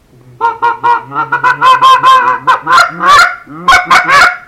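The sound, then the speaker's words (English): A goose call is blown in a fast, rolling feeding chuckle, a loud stream of short honky notes running together with a few lower murmurs, with no talking. “like, feeding calls, murmurs. I don't know if you can call it a feeding call, feeding chuckle.”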